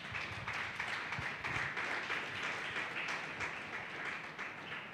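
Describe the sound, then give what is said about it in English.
A church audience claps their hands for Jesus in a dense, steady wash of applause, many overlapping claps blending into a continuous roar that holds level for the full five seconds. “Church, shall we clap our hands for Jesus?”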